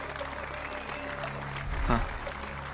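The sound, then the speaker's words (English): Studio audience applause on Who Wants to Be a Millionaire for the first contestant of the night fills the whole stretch, a steady dense patter of many hands clapping at once, with a faint tonal hum or music underneath and a brief swell near the end. “Please give a big round of applause.”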